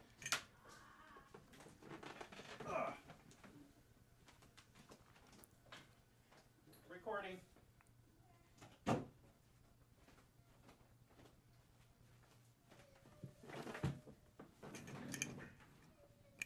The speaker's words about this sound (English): I need to close the door. Apologies, came in. She's making noise. Oh. Hang on. Let me go close the door. Be right back.